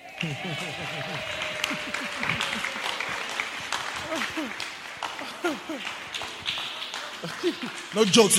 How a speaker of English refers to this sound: We clap for this teacher.